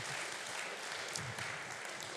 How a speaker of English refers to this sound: She almost got a round of applause there. Yes, I'll tell you what. Should we give her a proper round of applause? Yeah.